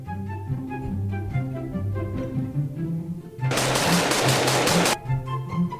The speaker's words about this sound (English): That's the director and the writer being shot.